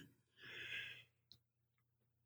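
yawning

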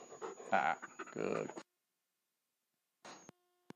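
dog panting and whimpering

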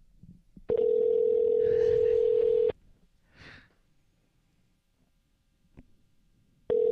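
phone call disconnected tone

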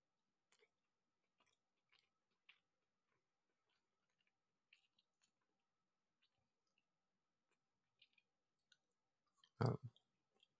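chewing

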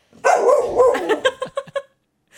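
dog barking

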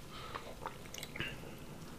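sipping a drink

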